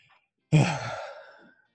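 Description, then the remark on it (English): A single sneeze: a sudden, sharp burst of breathy noise that tails off over about a second, heard on its own with no talking. “Bless you, mate.”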